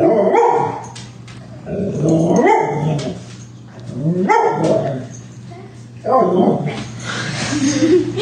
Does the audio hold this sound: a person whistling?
no